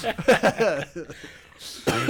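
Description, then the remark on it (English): A person makes a short run of throaty, voiced coughs and hacking sounds, with a breathy rasp near the end and a final strained cough. “See, he's coughing him up right now.”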